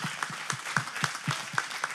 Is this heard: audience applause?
yes